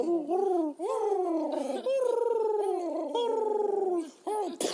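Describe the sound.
A voice imitates a crying dove with a long, wavering, mournful coo that slides up and down in pitch for several seconds, loud, ending with a brief sharp pop.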